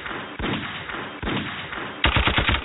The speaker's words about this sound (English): I mean, but don't think of it as just gunshots.